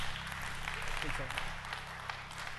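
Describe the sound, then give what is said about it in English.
An audience claps hands together, a dense, steady wash of many overlapping claps that holds its loudness throughout, with a voice briefly audible beneath it. “Come on, why don't you clap your hands.”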